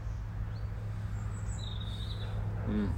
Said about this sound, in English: It's a beautiful day. The wind is up a little bit. Birds are tweeting.